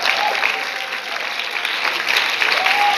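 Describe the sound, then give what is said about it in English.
A church audience claps steadily and densely, a continuous wash of many hands with no pause, loud and even throughout, with a faint high whistle or voice briefly rising above it. “If you feel the holy boldness, clap your hands.”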